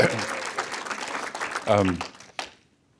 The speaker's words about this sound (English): There was one person applauding here.